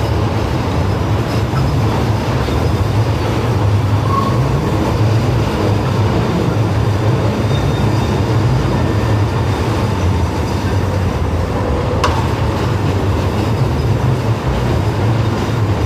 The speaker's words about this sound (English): let's wait for the train to pass.